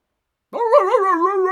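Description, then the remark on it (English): A small dog named Ted gives one loud, drawn-out bark that wavers in pitch, on its own after a moment of silence, with no one talking. “For a small dog, Ted had a very big voice.”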